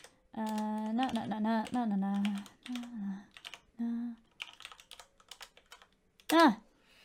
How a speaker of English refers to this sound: Thing is, if you click on their link, it opens a new window. So I'm actually just clicking on their names to follow them.